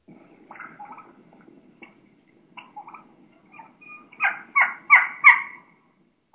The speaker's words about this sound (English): And you're going to hear a real, in my mind, young hen. And she's going to have a real high pitch. You know, she's going to be doing quite a bit of keeking, you know, some high pitch sounds, and it's just awesome.